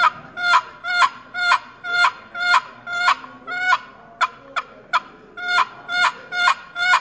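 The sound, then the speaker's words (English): A steady run of raspy turkey yelps imitating an old hen, made with a box-style hunting call, about a dozen sharp, evenly spaced notes with a brief quicker stutter midway, loud with no talking. “And the yelp.”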